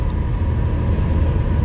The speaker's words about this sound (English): because if you can hear the background noise, I'm driving my car.